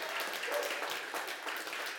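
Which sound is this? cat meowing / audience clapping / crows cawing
audience clapping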